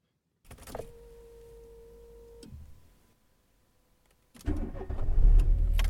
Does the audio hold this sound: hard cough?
no